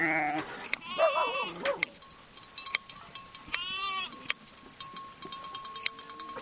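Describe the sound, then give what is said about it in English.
A ewe bleats loudly, a long wavering cry and then a shorter one, while sharp metallic snips and clicks of hand shears sound intermittently as a young Navajo shepherd, her legs tied together, slowly cuts her long, lustrous wool. “He ties the ewe's legs together and slowly scissors its long, lustrous wool.”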